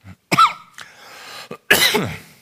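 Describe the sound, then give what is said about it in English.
A few harsh coughs in quick succession, the last one long and raspy, with a short throat-clearing rasp between them and no talking; a lingering, diminishing cough that is not a smoker's cough. “Marlboro cough here that I'm working off of tonight. It's diminishing, but it's still with me.”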